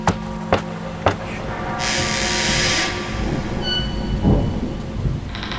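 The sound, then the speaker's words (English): Steady rain with a low, rolling rumble of thunder underneath, a brief rush of hissing downpour midway, and three sharp thuds at the start. No one speaks. “Look, we can go inside and wait till it stops raining.”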